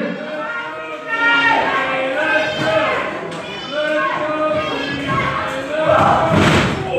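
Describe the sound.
A wrestling crowd cheers and yells loudly throughout, swelling in waves of massed voices, with a few dull thuds from the ring cutting through the noise, during a wrestling match as one wrestler throws another back into the ring, backs her into the corner and knees her in the stomach.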